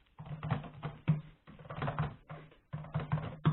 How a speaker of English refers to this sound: You know, just typing hard.